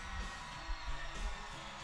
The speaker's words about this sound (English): It's just fans screaming. Yeah, this is the summer stage at Stone Pony, the one we were at.